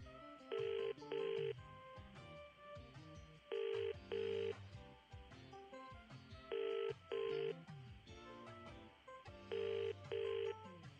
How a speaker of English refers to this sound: First, I pick up the receiver. Now, I am dialing the number. Now the phone is ringing.